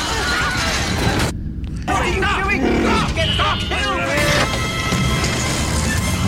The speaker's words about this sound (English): So this is it. The first instance of it right here. This Wilhelm. This guy right here.